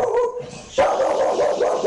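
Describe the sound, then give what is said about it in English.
A dog barks and vocalizes, a short burst followed by a sustained, loud, whiny stretch of barking with no one talking over it. “Cool dog, but you have to.”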